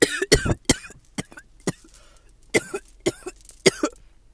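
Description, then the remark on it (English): A fit of coughing, several sharp bursts in quick succession with short pauses between, sounding slightly distant and muffled as if turned away from the microphone. “I had to, like, cough off mic for a second because, no.”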